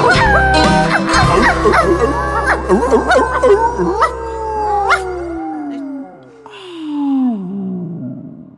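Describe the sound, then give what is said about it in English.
A dog barks and yips in quick bursts, then breaks into long, wavering howls that slide down in pitch, loud, with a low steady drone beneath the first half. “Yeah, who you gonna call? Truck dog.”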